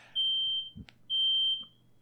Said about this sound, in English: Is somebody's fire alarm going off? Set off the smoke alarm again? Are you fucking kidding me? Did this happen last year during this too? Or what are the chances he just googled the fire alarm noise?